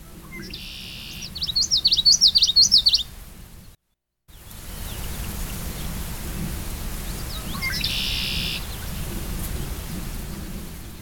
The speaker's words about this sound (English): And what was that? Red-winged blackbird we just heard? Mm-hmm, the one that kind of ends with a buzz. So that buzz that just came again, that's a red-winged blackbird.